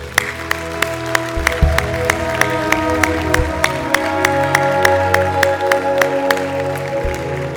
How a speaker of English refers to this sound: Hey, can we give God a big round of applause?